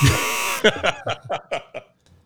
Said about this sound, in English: Jesus. Wrong buzzer. My bad.